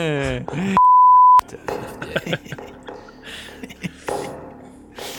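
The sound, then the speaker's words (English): A loud, steady censor beep cuts in for under a second, a single flat tone breaking off a speaking voice, with conversation resuming right after it. “I prefer that to a sense I prefer that to a sensor beep to have that.”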